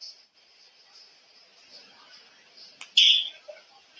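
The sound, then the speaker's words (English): Dishes being washed, heard over a speakerphone call: a thin, steady hiss like running water, then a sharp clink followed by a brief louder splash or scrape near the end. No one speaks. “Because, like, I can hear you washing dishes.”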